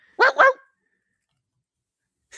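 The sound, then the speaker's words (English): A person imitates a dog with two quick, loud barks in close succession, followed by near silence. “All right, well, from now on, if anyone's listening there at YouTube, if you tell me to bark like a dog, guess what?”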